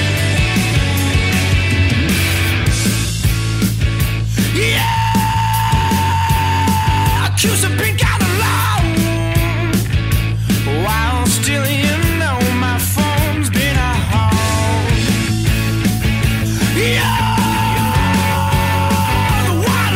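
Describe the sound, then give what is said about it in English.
Loud, dense punk rock with pounding drums and distorted guitars, a raw screamed vocal cutting through in bursts and held, strained notes across the whole passage. “Yeah, which again is a crazy scream.”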